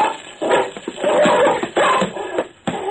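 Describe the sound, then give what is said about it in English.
A big brown dog snarls and growls ferociously in loud, continuous bursts of harsh rasping noise as it leaps on and attacks a man, with no speech. “The dog was like a big brown shadow as he leaped through the air.”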